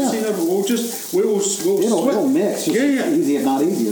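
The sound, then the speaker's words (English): Vegetables sizzle steadily in a hot pan as they are sweated down, with a constant hiss, occasionally scraped and stirred, while a voice talks loudly over the cooking noise throughout. “We'll sweat these down, sort them, you're doing a very good job of that, by the way.”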